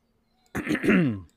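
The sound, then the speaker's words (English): A single loud throat clearing, one rough, voiced rasp lasting under a second, with quiet before and after. “Hold on, I got to clear my throat.”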